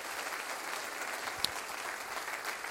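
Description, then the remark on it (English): An audience applauds in a steady, dense wash of clapping that holds evenly throughout, with one sharp louder clap standing out midway; no distinct voices or cheers rise clearly above it. The applause is a cheer for grace before the audience is seated. “Let's cheer for grace today before we're seated.”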